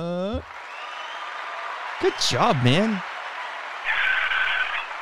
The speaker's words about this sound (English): And the crowd goes wild.